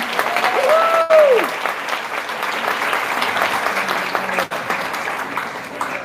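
Steady audience applause fills the whole stretch, a dense wash of clapping that stays loud throughout, with a brief whistle near the start.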